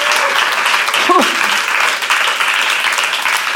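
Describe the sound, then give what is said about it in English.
A crowd claps steadily and densely during a sermon, a continuous wash of many hands applauding together, loud, with a brief voice rising above the clapping. “Now you can clap.”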